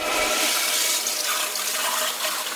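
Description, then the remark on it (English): A toilet flushes with a steady, loud rush of water, continuous for a couple of seconds, with a brief low thump at the start and no voices. “And I think what's really, really important and the really important message is to have a bin in your bathroom and only flush the three P's down the toilet.”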